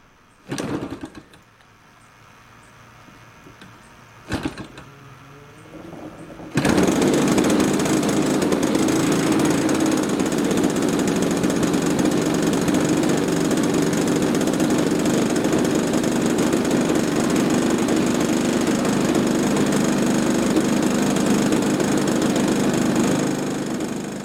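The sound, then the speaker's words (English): Two brief bursts, then the EME 60 engine of an Extra model airplane, fitted with a canister and a 24 by 10 propeller, starts and runs at a steady, loud, buzzing drone with its propeller spinning, continuing unchanged to the end with no talking. “It's been in a 24 by 10 prop. It has got a canister, so it is a little quieter than I think a little of them.”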